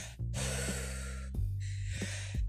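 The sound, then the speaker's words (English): Someone imitates heavy breathing before holding their breath: two long, loud, rasping breaths, one drawn in and one pushed out, with no talking. “You can hear him breathing a mile away when he's about to do one of these.”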